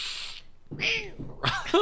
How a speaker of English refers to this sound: Oh, you have a cat. Yeah, I have a cat. Meep, meep. Oh, tiny little baby meows.